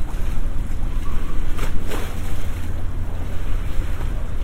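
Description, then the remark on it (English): River water sloshes and laps against an embankment edge in London under a steady windy rumble, with a couple of brief louder splashes near the middle; the swaying water carries a small child's football back and forth; no one speaks. “There's a small child's football on the water, and the swaying is bringing it forwards and back towards me and away.”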